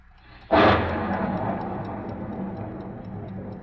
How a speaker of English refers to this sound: I never heard a clock that made so much noise, just ticking.